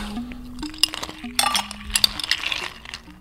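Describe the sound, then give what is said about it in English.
Ice cubes clink and rattle into a glass of vinegar syrup and water in a quick series of bright, sharp taps over about three seconds, with a low steady hum underneath and no talking. “Add some water in it. Some ice.”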